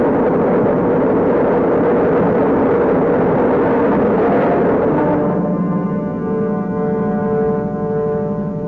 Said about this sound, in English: Ignition sequence starting. 5, 4. We have ignition. All engines are running. We have a liftoff.